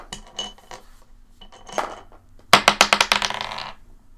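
Dice are rolled for a performance check in a tabletop role-playing game: scattered small clicks, then a burst of sharp, bright clattering hits that bounce quickly and settle over about a second. No one speaks.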